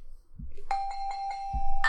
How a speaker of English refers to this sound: And we've got our buzzers.